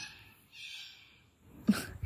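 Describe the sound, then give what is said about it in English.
A bird calls with thin, high chirping tones that rise and fall over the first second, then lets out one sharp, harsh squawk near the end. No one speaks. “Sorry about the bird. Oh my goodness, that's a really loud bird.”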